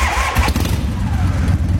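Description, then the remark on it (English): A motorcycle engine roars to life and rumbles steadily, a loud, low, throbbing idle that continues without any voices over it. “But do you have a motorcycle sound effect?”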